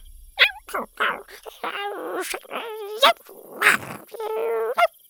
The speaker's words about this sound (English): The three adorable horned heads bonked into each other and chirped like little puppies.